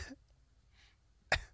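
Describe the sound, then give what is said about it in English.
One short, harsh cough bursts out loudly after a stretch of near silence with a faint low hum underneath, then quickly fades. No one speaks. “You have the black lung over there?”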